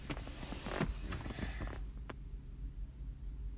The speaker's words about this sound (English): That garbage truck really made me stress. You really upset me. I was in my flow.